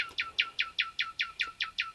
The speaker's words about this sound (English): There's something about the nightingale's song that makes folk determined to play along, like Beatrice Harrison's cello on the BBC.